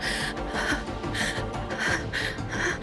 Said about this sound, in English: Sweat oozes from her brow, and she too falls to her knees, panting in a desperate attempt to reclaim the life that she felt leave her lungs.